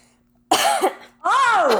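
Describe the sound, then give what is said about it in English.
Two loud coughs in quick succession, the second slightly longer and more strained, with a brief quiet gap between them and no talking. “I only slightly coughed one time before we started recording, number one.”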